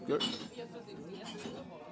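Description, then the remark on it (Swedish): Glasses clink together once near the start in a toast, a bright ringing tap, followed by a murmur of voices talking. “Skål för den. Skål igen, grabbar.”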